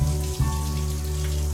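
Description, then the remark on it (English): A long, buzzy, low-pitched fart holds a steady tone for over a second, with a brief stutter near the start, and no voices around it. “Do people with perfect pitch know what key their farts are in?”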